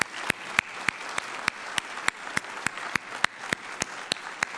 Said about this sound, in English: So the first thing I want to do is just show our appreciation to the moms by giving them a warm round of applause. Would we just say thanks to the moms?